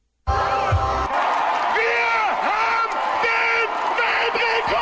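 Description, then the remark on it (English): A crowd of 2,766 people in Germany, gathered to set the Guinness World Record for the most Smurfs in one space, yells in German, a loud, dense roar of many voices with rising and falling shouts and whoops, sustained steadily from start to finish. “Like, I didn't know there was enough about the Smurfs to just yell about, but apparently there is.”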